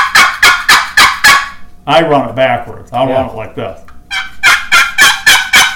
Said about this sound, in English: Your box call, you could hold it. You could either hold it this way, or you could see about a third of the lip.